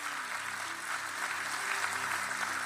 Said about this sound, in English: Come on, church. Clap for everybody that said that prayer. Come on.